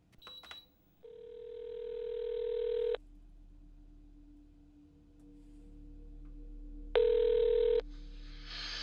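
A brief click of dialing, then two long ringback tones over a phone line, on a call to a phone belonging to the Duggan Hill Municipal Office, separated by a stretch of quiet line hiss, with faint static rising at the end.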